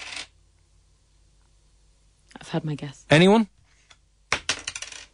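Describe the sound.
Euro coins, no copper ones, worth more than €1 and less than €5 in total, drop and rattle in short metallic bursts during a cash giveaway on Room 104, a brief clatter at the start and another near the end, with a man speaking briefly in between.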